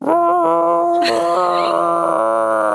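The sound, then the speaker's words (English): A human voice imitates an eerie, creaky howl, as of strange howls heard in haunted woods, holding a loud, wavering tone for nearly three seconds with a brief rasp partway through. “As the woods feel more and more haunted, you start to hear strange howls. Can you give us a an impression?”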